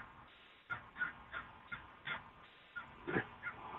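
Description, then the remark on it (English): A bird call sound effect: a string of about nine short, harsh squawking calls at an uneven pace, clear, with no talking. “Maybe that bird knows.”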